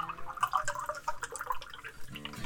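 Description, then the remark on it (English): Whiskey pours into a glass with a steady, gurgling trickle and light splashes, fairly quiet, lasting a couple of seconds with no one talking. “Just pour myself some more whiskey here.”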